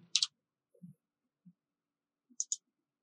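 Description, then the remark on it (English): Ten dice clatter in a few quick bursts: a sharp rattle, then scattered low knocks and taps, then two more bright clicks near the end. No voices. “Well, I rolled so many dice.”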